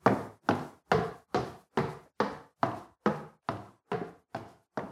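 Heavy footsteps trudge up a staircase: about eleven loud, evenly paced thuds, each with a brief dull decay, with no talking.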